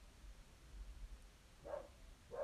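A person's dog barks twice in quick succession, short muffled yaps against a low background hum, with no one talking.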